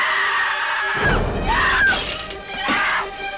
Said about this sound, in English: And Helen freaks out because her hair's all chippity chopped up, and she smishy smashes that mirror with her fist.